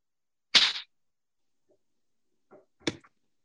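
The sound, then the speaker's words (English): A single loud, sharp hand clap, made to sync the start of a recording, rings out against silence, followed a couple of seconds later by a few softer clicks and a quieter snap-like tap. “So what I'll do, Sheena, I'll make that same loud clap, and I'll just start us from scratch.”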